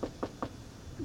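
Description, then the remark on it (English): Three quick knocks on wood in an even rhythm, moderately soft, followed by a brief quiet stretch with no talking. “Like, I'm 90% confident, and I'm knocking on wood.”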